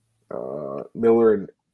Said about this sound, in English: You thought you were going to fart